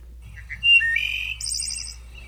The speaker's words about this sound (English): Also, the wood thrush definitely sounds like a dial-up modem. At least part of it. Just a cross-section of a dial-up modem.